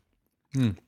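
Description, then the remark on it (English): A brief burst of chewing on a soft frosted vanilla donut hole with sprinkles, with a muffled hum of the voice mixed in, lasting under half a second after silence. “Yeah, ASMR chewing.”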